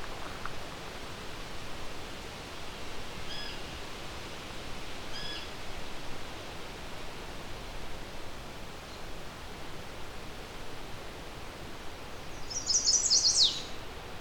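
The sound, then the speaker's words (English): Near the end, a single quick, abbreviated high-pitched chestnut-sided warbler song rings out in a rapid 'please please please to meet ya' pattern, set against a steady hiss of wind-like background noise. “It's a very fast, please, please, please to meet ya. It's a fairly abbreviated version.”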